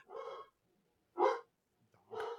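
A dog barks three times with roughly a second between each bark, mid-pitched and somewhat muffled, with quiet gaps in between and no one talking.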